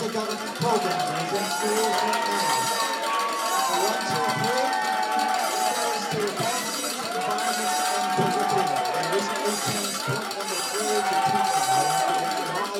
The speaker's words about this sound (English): It's completely drowned out by the fire alarm, yelling, and noisemakers.